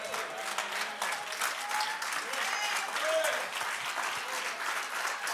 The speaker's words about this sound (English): But if God has ever changed your life, you ought to stand to your feet, clap your hands, and worship the Lord.